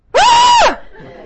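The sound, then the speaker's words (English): A person imitates a girl's scream: one loud, sustained, high-pitched shriek lasting about half a second that bends down at the end, followed by faint background noise. “She looked back and went, screamed, covered her eyes like this.”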